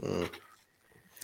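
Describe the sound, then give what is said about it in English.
A single deep, booming bark from a large Great Pyrenees dog named Coconut, loud, fading quickly into near silence with no one talking. “He's a Great Pyrenees, so he's like super big bark too.”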